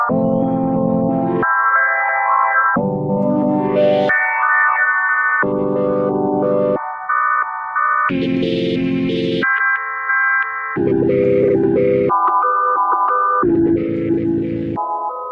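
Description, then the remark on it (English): A loud, steady electronic phrase alternates thick low chords with brighter sustained tones, each note washed in heavy reverb that smears it into the next. No one speaks. “So, on the reverb, I just let you”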